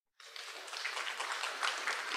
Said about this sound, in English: Can you hear that applause?